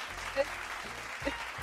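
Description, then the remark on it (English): A canned cheering track at the close of the NHL Dating Game show: steady crowd applause and cheers fill the whole moment, with a couple of brief louder shouts rising out of the noise. “Cheering track.”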